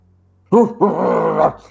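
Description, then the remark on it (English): After a brief quiet moment, a dog lets out a sharp bark, then a longer, rough growling snarl for about a second, loud and with no talking. “And the dogs are just barking at you.”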